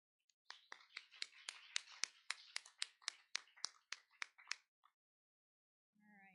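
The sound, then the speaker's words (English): Steady, rhythmic clapping, about fifteen crisp claps for roughly four seconds, then a pause before a voice starts speaking at the very end; an assembly applauding to show appreciation for its First Lady. “Y'all want to give her a round of applause and show her appreciation?”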